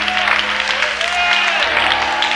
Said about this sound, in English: Let's clap one more time. Lift your voice. Give the Lord a shout of praise. Praise God.